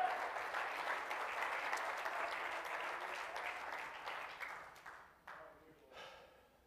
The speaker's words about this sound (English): Oh, clap your hands and praise him tonight.